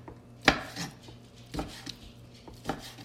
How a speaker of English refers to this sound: Step 1. Cut the chicken into 1-inch pieces and put them in the pan.